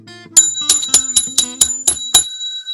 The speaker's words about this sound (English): John Roderick is on the line. He's ringing a bell most every time.